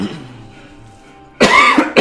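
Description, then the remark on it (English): A voice imitates a creature's cough: a quiet, low murmur for over a second, then a sudden harsh, raspy burst of coughing sounds, loud. “She coughs on you.”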